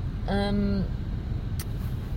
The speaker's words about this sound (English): Well, what happened there was I was like, well, I'll maybe turn my engine off so I can... So the sound's better